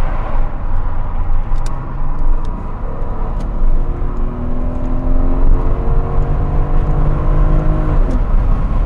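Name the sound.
sports car engine running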